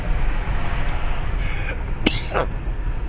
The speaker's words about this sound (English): How the fuck does someone smoke weed for 23 years? Still cough after every hit.